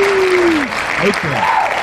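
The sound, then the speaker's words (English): Steady applause from a crowd fills the whole stretch, dense and loud, with a falling whoop and a few cheering voices rising over the clapping. “Give him a hand, everybody.”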